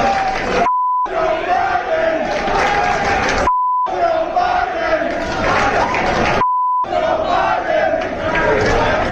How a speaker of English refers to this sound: We put together a medley, don't worry, they're bleeped, of fans in crowds starting viral F Joe Biden chants. Listen to this.